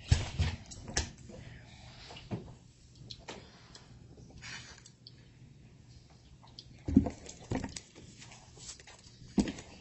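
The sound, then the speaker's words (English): Papers being shuffled and rustled by a lawyer at a court hearing, with soft crinkling throughout and sharp, irregular snaps and taps as sheets are handled, a few louder bursts near the end. “Sorry, I've got a lot of paper here.”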